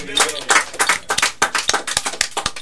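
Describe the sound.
Hands clap in a quick, uneven flurry of sharp, bright smacks, fairly loud, with a voice running underneath the clapping.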